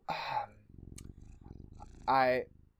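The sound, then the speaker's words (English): A cat gives a short meow, purrs in a steady low rumble for over a second, then lets out another loud, drawn-out meow. “I wasn't sure if it was a bong rip or a cat rip. Yeah, a cat rip.”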